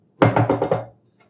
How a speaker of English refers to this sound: So you guys, let's knock. Knock, knock.